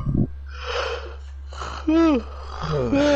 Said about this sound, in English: Stop yawning, dude. You making me yawn.